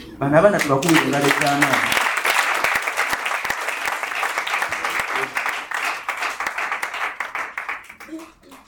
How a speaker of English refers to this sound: Let's clap.